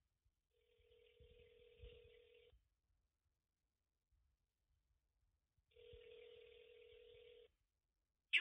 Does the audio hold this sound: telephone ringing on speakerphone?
yes